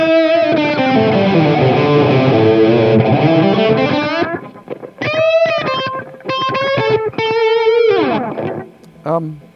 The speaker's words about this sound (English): Next to it, on the top row, we've got the line six, the green box. Again, I tend to use this for, there's a couple of effects. One of which is slap echo, very close echo.